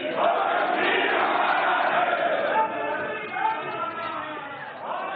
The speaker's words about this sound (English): And it immediately provoked an outroar on the floor of the parliament mm-hmm. with opposition politicians heckling him and booing and screaming.